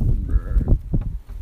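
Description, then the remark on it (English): A short, nasal goat bleat rings out, followed by a couple of brief, rougher grunting calls against low rumbling background noise. “What's up, goats?”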